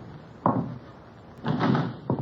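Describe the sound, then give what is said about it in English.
A door is opened: a sharp click of the latch, a brief rustling swing, then another knock-like bump, with no voices over a quiet background. “Now get back out of line of the door.”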